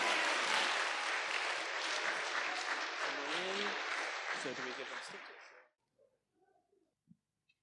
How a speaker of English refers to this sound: Okay, one big final round of applause for our primary winners. All right, that concludes our Poetry Slam.